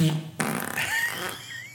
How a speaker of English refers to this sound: Oh, wow. Man. That was theatric. There was a point where I didn't know who was farting.